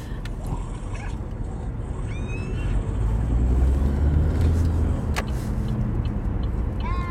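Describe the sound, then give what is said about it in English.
Continuous low road rumble from traffic in Whiteland as two cars pass, growing louder in the middle before easing slightly, with a few faint high chirps early on. “two cars just passed me.”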